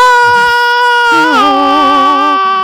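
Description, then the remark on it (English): A person imitates a movie scream with a loud, sustained, high-pitched wail that wavers and drops slightly in pitch midway, holding strong for nearly three seconds with no other talk. “Well, one was to scream like they did in the movie.”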